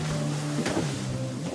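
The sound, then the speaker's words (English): A recreational motorboat engine in Minnesota drones steadily on the water, a low humming motor that shifts pitch slightly partway through, with a brief knock midway and no voices. “So it's not surprising that Minnesota has more recreational boats than any other state.”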